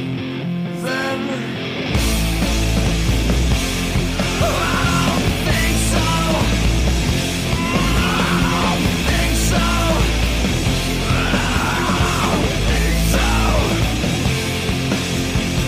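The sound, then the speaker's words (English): A grunge rock song plays loudly: a brief quieter opening, then the full band with heavy bass and distorted guitars enters about two seconds in, with a wailing, sliding vocal line over the top. “I don't think they get much airplay at all, but there's some great songs on that disc anyways.”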